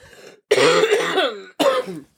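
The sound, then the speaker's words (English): A person coughs: a brief soft lead-in, then a long, harsh, hacking cough followed by a shorter second burst, loud with no talking. “Are you coughing okay?”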